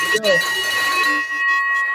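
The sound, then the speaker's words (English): A loud victory bell is struck and rings out with a bright, sustained metallic tone that hangs through the whole moment, with some faint murmuring voices underneath. “But all right, for the listener that's got ear pods in, I'm about to ring this victory bell like I've never ringed.”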